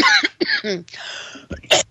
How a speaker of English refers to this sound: I'm going on another coughing fit. Goodness. Sorry.